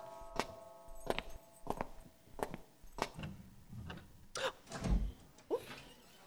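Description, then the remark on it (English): A door is opened for arriving guests amid a string of sharp clacks and rattles, about eight or nine irregular knocks, with a low creak near the end and no talking. “Oh, the first of our guests. Stoley, won't you attend the door?”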